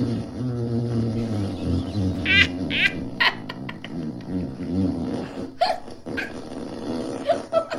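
A long, loud fart sound effect from a smart speaker: a low, buzzy rumble with wavering pitch, breaking into sputtering, squelchy bursts toward the end, with no one talking over it.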